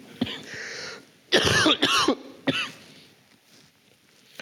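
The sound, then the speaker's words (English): A man coughs several times during a morning sermon, harsh bursts in quick succession after an initial rough clearing of the throat, then quiet. “Yet this morning, I want to draw your hearts, if I can, without coughing too much.”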